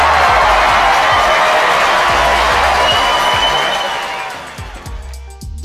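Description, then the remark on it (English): A loud applause and cheering sound effect, a dense wash of clapping and crowd noise over a steady low thumping beat, fading out over the last couple of seconds. “Can we get some snaps, claps, all of that?”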